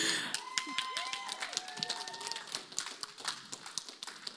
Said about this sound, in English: If anybody needs, yes, you can clap for him.